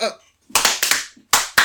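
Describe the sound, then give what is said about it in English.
Sharp hand claps ring out four times in two loose pairs, each crisp and loud with a short ringing tail, made as a sync signal for lining up audio recordings at the start of a recording. A brief voiced sound comes just before them. “Initiating an overhead. We're gonna clap.”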